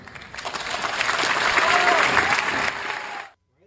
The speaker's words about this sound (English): Wow. Well, you know, it's interesting that Harvard's clapping, and I think that's a lot of the students.